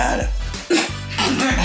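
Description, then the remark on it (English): A series of rough, harsh bursts, like someone coughing and clearing their throat several times in quick succession, fairly loud with no talking over them. “that cough syrup kicking in right now?”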